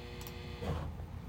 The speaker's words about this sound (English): I think your clothes are done drying because I just heard big ass buzzing. That's actually my ice machine. Yeah. Should probably get that checked.